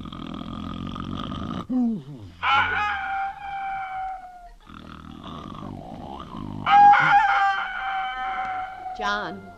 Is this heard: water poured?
no